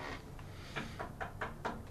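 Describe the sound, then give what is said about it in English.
A polite little knock on a door in the morning: a soft series of about five light taps, quick and gentle, coming in a loose rhythm over a faint background hum with no one speaking. “So we wake up this morning to a very just real polite little knock, just kind of.”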